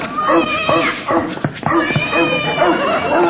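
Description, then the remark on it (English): A cat yowls and caterwauls loudly and continuously, its wavering cries broken by a few short, sharp yaps as a dog chases it. “I'm sure the dog chased the cat back to the drugstore.”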